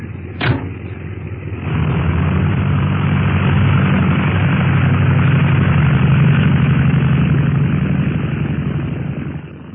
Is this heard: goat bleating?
no